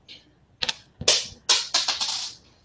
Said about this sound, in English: That was a drop dice. Don't worry about that.